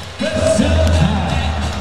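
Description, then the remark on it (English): A big Adelaide crowd at a basketball game roars steadily as a player who has fouled out is waved away, a loud continuous wash of cheering with a low rumble underneath and a few higher yells rising above it, no distinct voices speaking. “Getting waved away by this big Adelaide crowd.”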